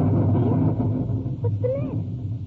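nature, distant thunder rumble

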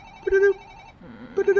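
signal or alarm, telephone ringing

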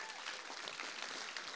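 crowd, audience applause

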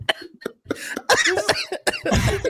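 human body sound, choking cough

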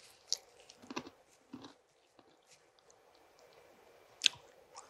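food or drink, chewing communion bread

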